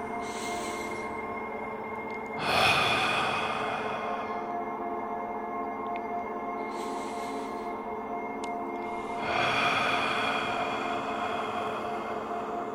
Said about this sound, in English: Close your eyes. Listen to my breathing. Fall in sync with me.